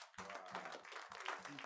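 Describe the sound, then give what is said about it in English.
A crowd claps for the Lord Jesus together in a dense, continuous patter lasting under two seconds, with a voice or shouts mixed underneath; the overall level is fairly soft and steady. “Clap for the Lord Jesus.”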